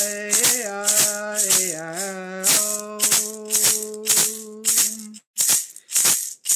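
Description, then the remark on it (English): Rattles shaken in a steady, even rhythm during a chanted song to Mother as people dance on embers, about a dozen crisp bursts, over a sustained low humming tone that drops out near the end, leaving the rattling alone. “Play your wind whistles, your rattles.”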